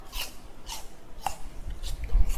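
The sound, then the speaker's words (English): Crisp, crunchy bites and chewing of a dropped apple being eaten while apples are put into a baking tray, a few sharp bursts spaced roughly half a second apart, fairly quiet with no talking. “Oh, I dropped one. Oh no. Okay, let me just eat that.”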